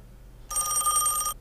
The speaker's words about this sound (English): Uh-oh. Phone's ringing.